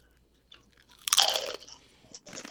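A loud, crisp crunch of someone biting into jalapeño potato chips, followed by a few rapid, crackling chews that trail off into softer crunches; no one speaks.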